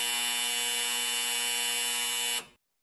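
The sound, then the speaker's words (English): A loud, harsh game show buzzer blares in one steady, unbroken tone for about two and a half seconds, then cuts off abruptly into silence, with no voices. “And then like a buzzer goes off.”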